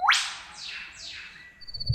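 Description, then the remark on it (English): A bird calls with a sharp upward-sweeping note, followed by two longer descending swooping whistles, clear, with a thin steady tone near the end and no talking. “Oh, what a lovely sound. What bird was that?”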